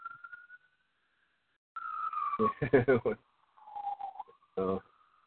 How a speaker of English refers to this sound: Oh, here's the sirens.